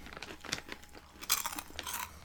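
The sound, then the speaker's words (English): Crisp crunching as someone bites into a crunchy dried cheddar cheese snack, followed by a few rapid, brittle chews over roughly two seconds, with no talking. “It has a nice crunch to it.”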